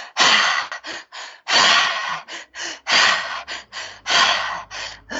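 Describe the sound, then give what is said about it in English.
Intense, forceful holotropic breathing, a fast repeating cycle of two sharp breaths in followed by one breath out, with no talking. “So a holotropic style is a very intense way of breathing. I'll just do it so people can hear it.”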